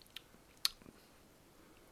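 A quiet first sip of a fruity beer from a glass: soft wet mouth and slurping sounds around a single small click, with no talking.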